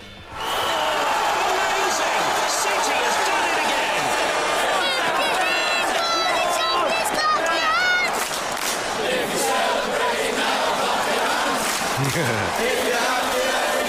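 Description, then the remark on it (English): A large crowd of Manchester City football fans chants to the tune of the nursery song "If You're Happy and You Know It" in unison, a loud, dense wall of voices that stays steady throughout, with individual shouts rising out of the mass. “Anyway, they have taken "If you're happy and you know it, clap your hands," and they have turned it into this.”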